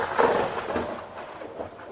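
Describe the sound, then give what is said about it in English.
A thunder sound effect rolls through as a sustained, broad rumble, fairly loud at first and easing slightly, heard on its own without any talking. “You just kind of throw in that like thunder effect whenever you don't know what to press, don't you?”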